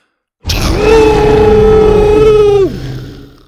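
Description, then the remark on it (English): A single loud, sustained triumphant roar from Buck, a red-headed T-Rex standing over a defeated raptor: a steady, harmonic mid-pitched bellow over a rough low rumble, lasting about two seconds before its pitch drops and it fades out. “Buck raised his red head to the sky and let out a triumphant roar.”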